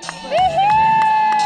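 A small group of teens claps in scattered, uneven bursts for a 15-year-old girl after she gets her shot at a farm, while a sustained high-pitched whoop or whistle rises and holds over the applause, with some crowd murmur underneath.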